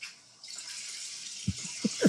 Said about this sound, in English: Is that a toilet flushing? I think so. There we go.